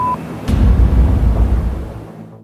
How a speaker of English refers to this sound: 75 men around our building and they're shooting at us. Tell them their children and women in here and to call it off. Hello? I hear gunfire.